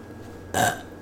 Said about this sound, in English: do you want to close this out on a burp? If you can.